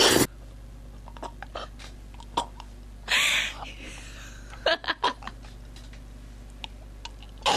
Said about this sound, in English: That is the most disgusting thing I've ever heard in my life. But I like it. How did you get that chewing noise? It's just chewing. What were you chewing?